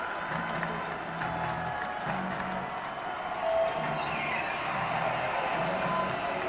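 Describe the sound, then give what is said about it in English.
A stadium crowd at a football game roars steadily for several seconds, a dense wash of cheering and clapping with a brief swell just past the midpoint and no clear single voice standing out. “Crowd has been in full throat all night.”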